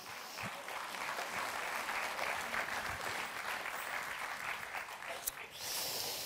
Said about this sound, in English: Would you welcome, friends, by a round of applause